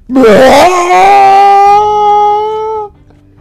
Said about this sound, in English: And then he let out a mighty scream.